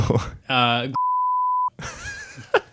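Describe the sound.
A single steady, high-pitched censor bleep lasting under a second cuts into a stretch of talking, covering a spoken name, with voices speaking just before and right after it.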